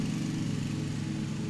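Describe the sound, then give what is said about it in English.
A lawn mower with its blade set low, mowing down to the dirt, drones steadily with a low, buzzing hum and harmonic rumble, holding a constant pitch and loudness throughout, with no voices. “What do you got that blade on, a 1? Butt with the ground.”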